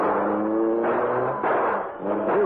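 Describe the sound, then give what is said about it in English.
A car engine drones steadily, its pitch shifting as it revs and surges, loud, with brief dips before picking up again. No one speaks. “Let's get to the Black Beauty. Hurry. I'll drive.”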